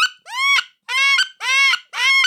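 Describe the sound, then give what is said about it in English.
A man imitates a wood duck's call with four loud, squealing, high-pitched cries, each rising then holding briefly, repeated at an even pace with short pauses between. No speech. “Those ducks, I was just screaming that. Wood ducks are moving.”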